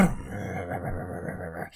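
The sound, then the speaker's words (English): A man imitates a V8 engine with his voice, a steady, throaty low rumble held for nearly two seconds at even loudness, fading off at the end, with no other talk. “I just made it a V8, by the way.”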